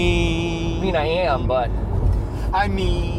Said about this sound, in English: I guess the car, the rumbling in the car.